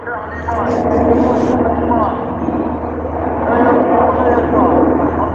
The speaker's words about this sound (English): On Wednesday night, in the town of Atmer in Idlib in Syria, residents woke to the steady hum of helicopters overhead.